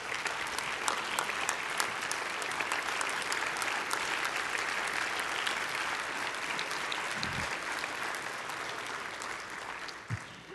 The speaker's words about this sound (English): Would you stand? Let's give the Lord honor and give him a clap offering. Would you do that?